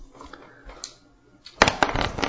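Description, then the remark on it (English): After a short quiet stretch, dice are tossed and clatter across a hard tabletop in a quick burst of sharp rattling clicks that continues to the end. “Wild man with the dice.”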